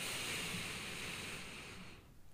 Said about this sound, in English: And we'll do a little box breathing. So we'll breathe in, hold, and then breathe out and hold. So breathe in.